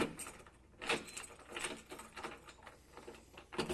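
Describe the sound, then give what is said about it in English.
Keys jingle and rattle in a lock for a few seconds with metallic clinks and scrapes, followed by the click of a door being unlocked. No voices are heard. “Dude, you can't just unlock the door.”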